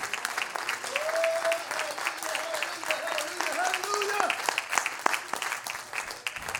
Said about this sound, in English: Oh, somebody clap your hands.